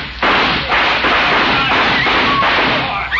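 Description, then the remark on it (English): A dense, continuous barrage of gunfire shot into the air, loud sharp reports overlapping into a steady roar that fills the whole clip with a harsh, crackling texture and no pauses. “Let's go in shooting.”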